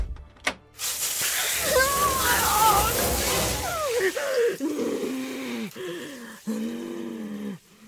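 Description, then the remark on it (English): A loud, steady hiss of water spraying from a shower hose for several seconds, with a groaning, wailing voice over it that carries on in strained cries after the spray stops. “If I can unhook the shower hose”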